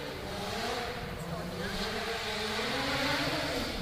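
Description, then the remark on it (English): A stunt car's engine rumbles steadily and grows slightly louder, its pitch climbing a little as the car is driven onto a set, over a wash of broad background noise. “Why don't we go ahead and bring out the hero car and let everybody see it?”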